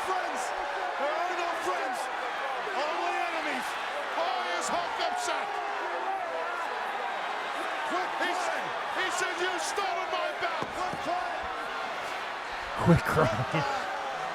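A dense roar of arena crowd cheering at a wrestling match runs steadily throughout, full of overlapping shouts and whistles, with a sharp burst of louder noise and thumps near the end.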